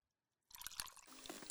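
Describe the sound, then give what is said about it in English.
Ice cubes rattle inside a cocktail shaker, starting after a short silence: a dense burst of rapid, bright clinks and crunchy, wet clattering that runs for about a second. “Listen. Ice cubes. Shaker.”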